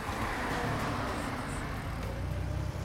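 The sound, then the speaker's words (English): A car drives across town to a plant, its engine and tyres making a continuous low rumble with a broad hiss of road noise that holds at an even loudness throughout, with no voices. “I rushed out the door and drove across town to the plant.”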